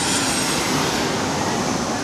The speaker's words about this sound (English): Another Southwest 737-800.